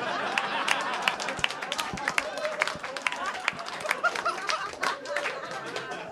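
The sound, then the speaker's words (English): An audience applauds steadily for about six seconds after the word 'niche' is pronounced, many overlapping claps forming a dense crackle, with some murmuring voices and laughter mixed in. “Everyone listening right now just went, why did they applaud that?”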